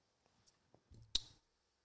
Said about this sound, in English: but I did want to, and I'm going into my account right now and I'm clicking.